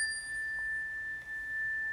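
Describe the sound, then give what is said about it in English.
Cleansing chimes ring out in a clear, high, sustained tone that hangs evenly through the whole moment, its brighter upper overtones fading away partway. Quiet and steady, with no voices. “We're going to start with the three cleansing chimes.”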